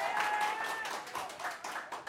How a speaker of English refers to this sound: Wow, they applauded. I think that's awesome. I think it's cool.